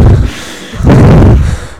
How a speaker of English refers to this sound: It's just us breathing hard. Everyone breathing deeply.